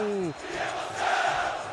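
A stadium crowd of Santos fans roars after a Neymar goal about two and a half minutes into the match. It is a loud, sustained wash of shouting voices that swells midway, with a single voice's falling shout briefly rising above it at the start.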